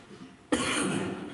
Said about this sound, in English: And I'm sorry I'm coughing into that mic, but I can't speak, but it's right there.